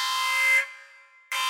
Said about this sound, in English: Oh no, that's the spoiler alert alarm!